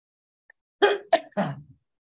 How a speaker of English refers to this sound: I'm going to cough, pardon me.